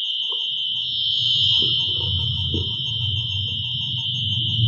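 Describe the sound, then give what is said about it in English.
An EMF meter, used by a paranormal investigation team searching a cafeteria, sounds a steady, shrill electronic tone like a car alarm that holds without a break for the whole stretch, loud over a low rumbling background. “Kind of like a car alarm.”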